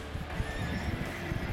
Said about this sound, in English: as the horse comes charging forward